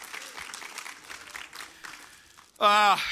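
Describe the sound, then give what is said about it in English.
An audience applauds the Lord with steady, moderately loud clapping for about two and a half seconds as the offering basket comes by, then a loud, sustained tonal voice or note cuts in as the clapping fades. “So applaud the Lord.”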